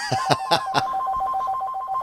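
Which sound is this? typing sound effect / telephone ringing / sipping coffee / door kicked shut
telephone ringing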